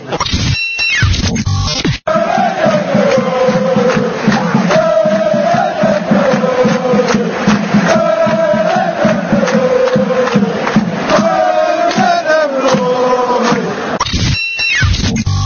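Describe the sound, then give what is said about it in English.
A loud football stadium crowd at half-time, with Forest leading 1-0, roars steadily, with a swelling chant or song rising and falling in pitch through it, broken by a brief dip early on. “Well, it's half-time. It's 1-0 Forest, and we're down to 10 men.”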